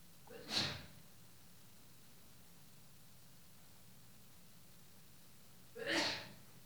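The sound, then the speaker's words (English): Two sharp, explosive sneezes break a hushed stretch of silent prayer with faint background hiss, the first near the start and the second about five seconds later, with no talking. “Bless you.”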